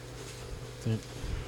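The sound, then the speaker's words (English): A mosquito buzzes in a thin, steady drone, swelling briefly louder for a moment near the middle before settling back to its constant whine. “I'm gonna punch that mosquito.”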